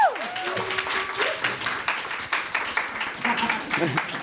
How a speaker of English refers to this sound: round of applause